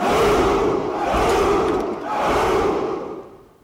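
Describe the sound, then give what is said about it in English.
A crowd of Spartan soldiers roars a loud battle cry in three surging bursts, the massed shouting swelling and dipping before trailing off at the end. No individual speech is heard. “Yeah, I was like, okay, yeah, you screamed, you grunted.”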